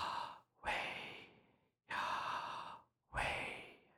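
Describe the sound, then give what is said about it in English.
Slow, deliberate breaths: a long airy inhale and exhale, then another full cycle, each breath broad and hissy with brief silent pauses between them. “And one interesting fact about this word is that some consider the pronunciation of Yahweh as the actual sound of breathing. Yah as the inhale and Weh as the exhale.”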